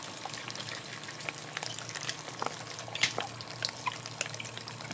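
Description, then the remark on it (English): An industrial shredder churns homemade slime (gack) steadily, giving a dense wet crackling and grinding noise with scattered sharp pops and snaps, louder bursts near the middle and end; no voices. “So this is the shredder shredding. That's what it sounds like.”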